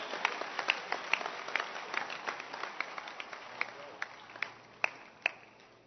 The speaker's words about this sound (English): Clap your hands for the fresh boy.